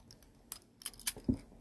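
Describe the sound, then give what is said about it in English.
A fidget toy clicking: a few sharp, crisp snaps at irregular intervals, then a softer, duller thump near the end, with no talking. “This is also an excuse for me to play with fidgets.”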